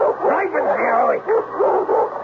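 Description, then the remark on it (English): A dog barks and snarls in a steady, agitated burst of growly yaps with barely a pause, the sound slightly boxy and muffled. “Mr. Klemper seemed forever to be out of doors, roaming the property with his snarling dog”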